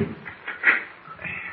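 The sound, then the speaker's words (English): Metal door bolts are drawn back on a door, scraping and sliding with a sharp clunk midway, a brief grating sound in a muffled, quiet setting. “Look, there's a door. Oh, let's try it.”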